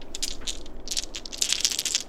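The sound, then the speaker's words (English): Small hard dice clatter and rattle in quick, irregular bursts as a tabletop role-playing game player gets out dice for a performance check, a dense run of sharp clicking that grows busier toward the end, with no voices over it. “Oh, he's getting his dice out, everybody.”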